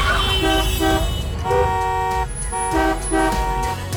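Car horns honk repeatedly in busy traffic, several loud blasts overlapping in an irregular rhythm over a low engine rumble, continuous for the whole stretch.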